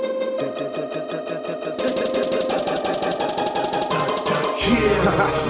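Driving, dramatic music in a superhero style: a rapid pulsing low figure churns beneath sustained tones, staying loud and steady, then swells with a heavier low rumble near the end. No one speaks.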